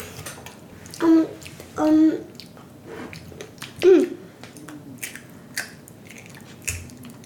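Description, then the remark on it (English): Crunchy chewing of raw broccoli, with a few loud crunching bites early on followed by softer, scattered crackles and clicks as the chewing continues. “Yes, that's broccoli. Do you like this part? I eat that part and the crunchy part.”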